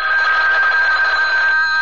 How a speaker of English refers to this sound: I'll have to get the phone.